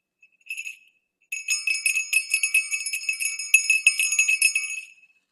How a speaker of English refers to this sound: So for all of you that clicked the bell, and for all of you who are tired of hearing us ring bells, I do have one here though.